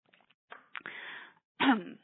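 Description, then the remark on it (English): A person clears their throat in a few rough, raspy bursts, ending with one louder, gravelly hack, with no talking around it. “I'm just going to clear my throat quickly.”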